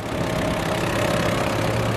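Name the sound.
boat engine idling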